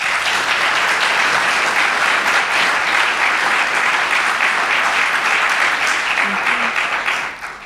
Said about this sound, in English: Would you please give her a hand of applause?